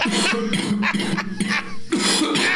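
A wet, hacking cough delivered on air erupts in a rapid string of about five harsh, rasping bursts, loud, with no talking around it.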